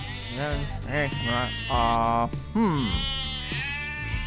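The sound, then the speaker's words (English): Sheep bleat repeatedly, several wavering cries overlapping in quick succession, loud, with a low steady rumble underneath. “A man had 100 sheep, but one could not be found.”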